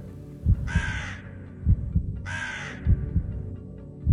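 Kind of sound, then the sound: bird, crow cawing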